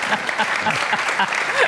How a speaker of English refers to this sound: Round of applause for Lisa Margonelli and Warren Olney.